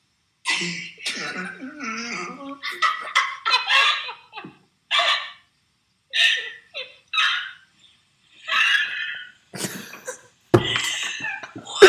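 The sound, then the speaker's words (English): People make a run of hoarse, honking vocal noises in imitation of a foghorn, strained and croaky bursts separated by short pauses, ending with rough, cough-like blasts. “But the sound that came out of my mouth, like, I didn't know where it came from. It's like a foghorn.”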